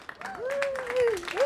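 A brief burst of audience applause, a quick patter of many hands clapping at moderate volume, with a drawn-out cheer or whoop rising and falling over it.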